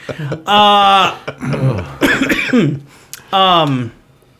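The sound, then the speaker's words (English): A person gives a few loud, exaggerated, voiced coughs in short bursts, with bits of speech and throat-clearing noises mixed in between. “Every time you guys interrupt me, I cough.”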